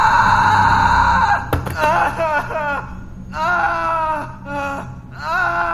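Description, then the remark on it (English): A man screams in pain after his eye is gouged out, letting out several drawn-out anguished wails in bursts with brief gaps, loud, after a rush of noise and a few sharp clicks at the start. “He doesn't stop screaming, even when the paramedics arrive.”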